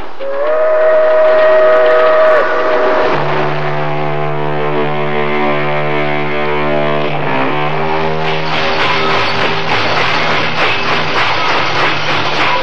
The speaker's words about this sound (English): From the way I was bumped, I knew we had come to a stop. The freight train doors were slid open, and I could hear voices and the sound of water.